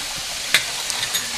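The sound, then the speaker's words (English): Bacon grease sizzles in a hot waffle iron with a steady, bright hiss, broken by one sharp crackle and a few softer pops afterward. No one speaks. “We're just gonna gently add a little bit of bacon grease in the bottom of our waffle iron here.”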